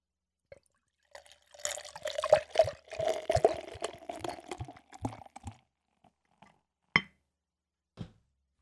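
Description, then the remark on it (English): Belgian beer glugs and splashes into a glass for a few seconds, fairly loud, rising in a gurgling pour before trailing off, followed by two sharp glassy taps. “Let's get on with the pour.”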